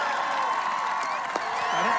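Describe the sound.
A packed rally crowd in West Virginia cheers for the president as he introduces Carol Miller: a steady, dense roar of overlapping voices, with a few high whoops and whistles rising above it for the whole stretch.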